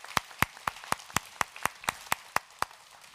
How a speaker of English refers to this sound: Can we clap for our kids as they head that way?